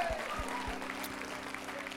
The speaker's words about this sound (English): Everyone give God praise one more time before you sit down. Come on now, you know the Bible says clap your hands and shout to God with a voice of triumph. Can you lift your voice and clap your hands and give God praise?